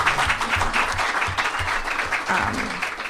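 An audience at a Tech Summit session applauds the judges steadily, many hands clapping in a dense, continuous patter that holds at a fairly loud, even level throughout.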